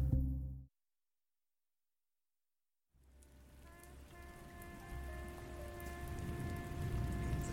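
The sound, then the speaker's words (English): After a short burst and a couple of seconds of silence, storm rain fades in as a steady, dense hiss with a low rumble, building slightly louder, with faint sustained tones humming beneath. “This storm is not normal.”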